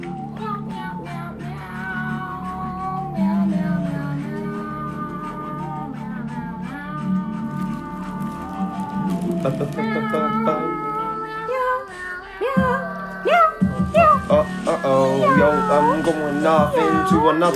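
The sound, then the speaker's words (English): A voice imitates a cat with a long run of drawn-out, pitch-bending meows, loud, repeating one after another over a steady droning background, becoming choppier and more strained near the end. “Space Cats. What? Meow. Meow. Meow.”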